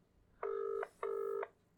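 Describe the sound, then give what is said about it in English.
A phone call ringing out: two steady electronic tone bursts in a quick double pulse, clear, with no one talking. “He might pick up, he might not. If it's after three rings, he won't pick up.”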